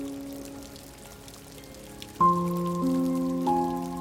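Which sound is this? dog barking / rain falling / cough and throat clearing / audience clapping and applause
rain falling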